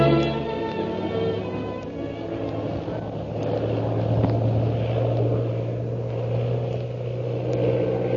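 A propeller plane engine drones steadily and loudly, its deep hum holding level throughout with a faint rise and fall in pitch, as Shanghai Lil stunts her plane to escape a pursuer.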